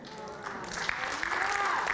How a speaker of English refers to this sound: Yeah, and clap for God, don't clap for me.